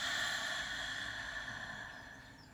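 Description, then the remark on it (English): A single long, deep breath drawn in through the nose, a steady airy hiss that stays fairly loud before tapering slightly, with no talking. “Let's take a deep breath in through our nose, breathing in that intention and release.”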